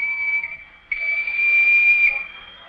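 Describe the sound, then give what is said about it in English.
A train whistle, on a train bound for London, sounds two shrill, steady blasts at a high pitch, a shorter one and then a longer, louder one that fades out, with no voices. “she may decide to get off this train, not go to London at all.”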